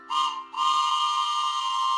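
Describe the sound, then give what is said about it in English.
The whistle of the "Bible train", a steam train pulling into town, sounds two loud blasts, a short one followed by a long sustained hoot. Its chord-like tone is shrill and steady, with no voices. “It's the Bible train, and it's pulling in town just in time.”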